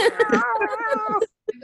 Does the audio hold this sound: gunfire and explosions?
no